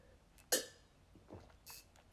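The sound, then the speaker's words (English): A loud, sharp sip of lemonade from a mason jar, one abrupt slurping burst followed by a couple of softer swallowing and breathy sounds, with no talking. “I didn't mean for it to be a loud sip, but I'm trying to drink out of a mason jar.”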